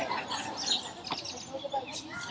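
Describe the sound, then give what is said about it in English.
Birds chirping faintly, a scattering of short, high tweets over a soft, steady background hiss, with no one speaking. “I don't know if the birds are enjoying it or”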